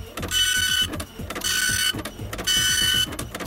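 A dot matrix printer rattles loudly and close up, its buzzing print head sweeping in repeated bursts with brief pauses between passes, the pitch of the whine shifting as it goes.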